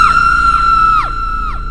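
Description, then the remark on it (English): A girl screams one loud, high, sustained note, holding steady for nearly two seconds while brief falling swoops recur underneath it. “I lifted my head to give my friends the result when one of the girls screamed.”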